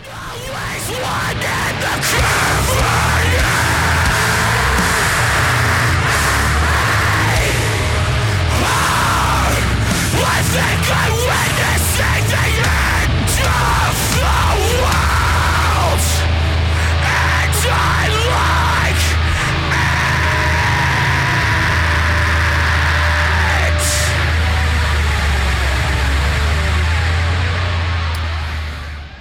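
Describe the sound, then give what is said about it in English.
A heavy, raw-sounding band song, the first song on the band's record, plays loudly and without pause, with dense distorted guitars over a thick low rumble of bass and harsh, screamed vocals cutting through. “That clip comes from the first song on their record titled …, and that part immediately goes into this part.”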